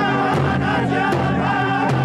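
A loud, dense crowd of the Standing Rock Sioux and thousands of others gathered to stop the Dakota Access Pipeline cheers and sings without pause, celebrating victory, while a few sharp drumbeats land at roughly even intervals through the noise.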